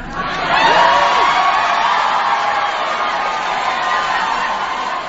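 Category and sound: crowd, audience applause and cheering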